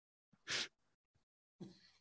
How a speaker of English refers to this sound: Oh, got a little cough.